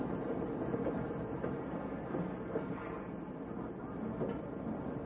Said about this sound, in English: Tonight's file opens outside the small shack that serves as the railroad station in a midwestern farming town. A lone man stands on the platform watching the noon train from the city arrive.